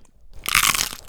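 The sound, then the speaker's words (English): A loud crunch of someone biting into crisp food, a burst of bright crackling that lasts about half a second after a brief quiet moment, with no talking. “This official substantial crunch is for Nora.”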